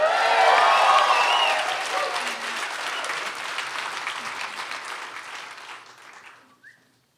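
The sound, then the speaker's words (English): An audience of a few hundred people at a live show recording in Denver applauds loudly, the clapping strongest at first with some cheering, then thinning into scattered claps that fade out over about seven seconds. “If you're listening at work or in your car, and this sounds a little different than normal, that's because this is recorded live in Denver with a few hundred of the coolest people in the audience.”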